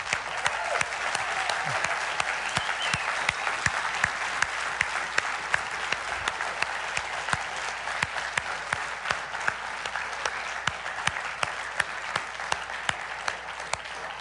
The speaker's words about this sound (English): This is Veterans Day weekend. And if you are one of our veterans here, I know our church is full of veterans and heroes. And if you are a veteran, would you stand so that we can cheer for you and applaud for you?